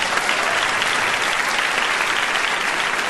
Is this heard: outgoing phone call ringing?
no